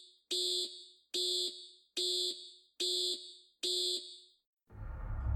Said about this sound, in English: On the LEM, their computer now began sending out alarms. With the data from landing radar and other systems, the computer was overloaded.